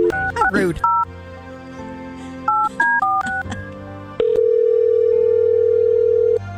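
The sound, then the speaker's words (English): Two quick clusters of touch-tone keypad beeps, each a short run of bright dual-pitched tones, followed by a steady, continuous phone tone that holds to the end, as the Y107 Morning Show radio hosts place a call to a listener. “Well, let's try and get her on the phone here.”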